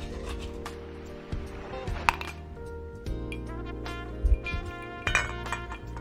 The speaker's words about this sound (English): So before I let you go, I'm going to drop an ice cube. Let's drop an ice cube in our whiskey glass.